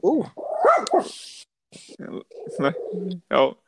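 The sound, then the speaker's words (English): A dog barks loudly in a rapid, agitated series of several sharp barks and yelps, with short pauses between bursts, angry at a person. “The doggy's mad at me.”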